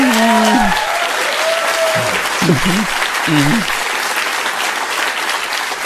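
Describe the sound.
Steady audience applause fills the whole stretch, a dense wash of many hands clapping at an even loudness, with a few brief voices calling out over it early on, as the audience applauds a remark that Americans should take Afghan refugees into their homes.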